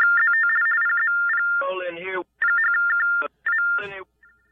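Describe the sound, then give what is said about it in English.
A phone's loud electronic test alert tone sounds in repeated warbling bursts, switching rapidly between two pitches, with short bursts of a voice cutting in between the tones. “Are we having one of those tests, Beaver? Is that what that is? Yeah, a test exclusive to Jeff's phone.”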